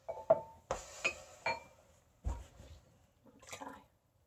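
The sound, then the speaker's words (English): Small splashes of sake at almost body temperature being poured onto a wrist, a handful of short wet splatters with faint glassy clinks, quiet, with no one talking. “So I tend to pour a little bit onto my wrist, which my father said is acceptable, but quite provocative.”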